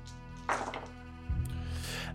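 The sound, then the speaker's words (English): Dice for an infiltration roll tumble into a tray with a sharp clatter that rattles briefly and fades, followed by a dull, low thunk a moment later; no one speaks. “goes for the dice”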